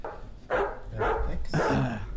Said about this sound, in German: Hast du mal die scheiße Hundegeräusche aus?